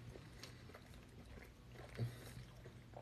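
Quiet chewing of plant-based pasta: soft, moist mouth clicks and smacks repeating at an uneven pace over a low steady hum, with no one talking.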